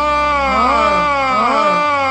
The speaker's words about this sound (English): Wait a minute. Was that a scream?